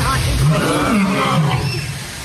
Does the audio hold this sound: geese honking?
no